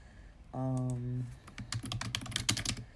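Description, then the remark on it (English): Rapid, uneven clicking of a computer keyboard being typed on by someone checking into work, following a brief hummed tone, with the keystrokes clattering steadily through the second half. “If you hear typing, I'm trying to, it's about time to check into work.”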